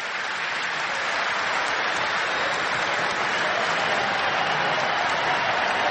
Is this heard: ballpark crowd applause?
yes